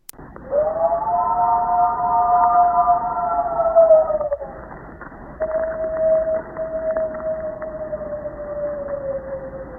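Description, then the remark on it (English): A double howl recorded in Falk, Arkansas, attributed to a swamp creature, from A Place in the Boggy: two long, sustained wailing tones with no talking. The first is louder and richer, holding steady for about four seconds before dipping; after a brief gap, a thinner second howl slowly slides lower. “And then these, of course, the now infamous double howl from A Place in the Boggy.”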